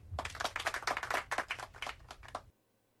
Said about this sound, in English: Small applause. It's the Eric Andre clap from his show.